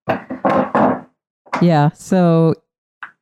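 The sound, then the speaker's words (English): A door is shut with a few solid knocking thuds in quick succession, followed by a short stretch of voiced sound, then a faint tap at the end. “Maybe I also close this door.”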